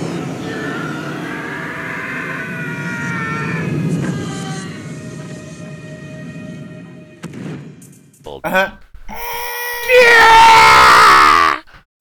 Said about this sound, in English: Travolta and Howie Long are like arguing about the bomb now, and Slater throws down a dead body as a decoy and then zooms in from the other side and drop kicks Howie out of the train. We get the longest and most textbook Wilhelm scream in the world.